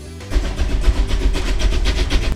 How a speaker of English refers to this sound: Did you see that train? You're darn shooting I've seen that train. There's your pride and joy just coming off the turntable. Yes, sir, the old express.